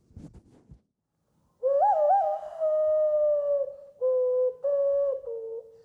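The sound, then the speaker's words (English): A hollow, owl-like hand whistle plays a short tune of sustained, breathy tones with a few quick warbles, shifting between several pitches in phrases, loud and alone after a brief rustle. “I was on MDMA one day, and I remembered I could do this hand whistling.”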